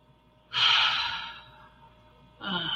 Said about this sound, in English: Oh, there you go. Yawning, the breathing is nice. Yes, that's great. You know, there you go. Keep yawning.